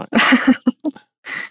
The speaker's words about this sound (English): Right. Yeah, you're not allowed to cough. No. Coughing. No. Coughing is forbidden. Don't cough.